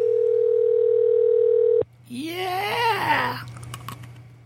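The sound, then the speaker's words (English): A steady electronic ringback tone on a phone line during an outgoing call hums for nearly two seconds and cuts off, followed by a wavering, moan-like vocal sound. “Is this person going to answer?”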